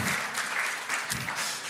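A crowd claps steadily and loudly, a dense continuous wash of many hands applauding together with no voices standing out, sustained throughout the short moment; the applause is for the band after a time of worship at a morning service.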